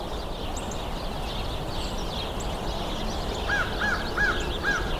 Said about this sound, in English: American crow. Bump my estimate up by another 10. Still be conservative, but I feel like it's probably more like 40 or 50 in there. But I'll put 25.